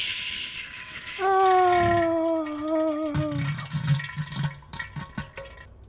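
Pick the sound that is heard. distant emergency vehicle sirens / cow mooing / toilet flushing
toilet flushing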